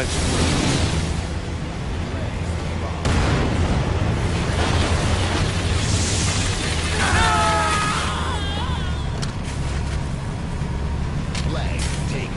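A tank's loud, steady engine rumble and grinding treads as it runs over and crushes a soldier, with a burst of shrill, wavering squeals midway and a dense noisy roar throughout.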